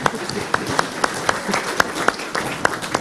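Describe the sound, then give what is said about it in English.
Audience applause after a Bible reading: a steady wash of many hands clapping, with sharper individual claps standing out in a fairly regular rhythm, moderately loud throughout with no speech. “Bible reading doesn't normally win applause, but that was a good performance.”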